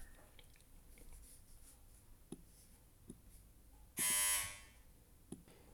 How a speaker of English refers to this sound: And so you can see from the interruption, my front doorbell ringing, that things are real.